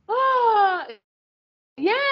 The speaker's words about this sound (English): I was trying to show you an example of how you yawn, like started exhaling.